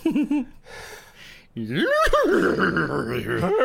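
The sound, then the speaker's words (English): A person vocally imitates a horse's neigh, warped and strange, as if played backwards, as a backwards neigh to Baphomet: a short voiced warble, a breathy rasp, then a long, loud, wavering whinny. “And then speak in a backwards nay to Baphomet.”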